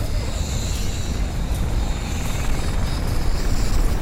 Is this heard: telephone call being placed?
no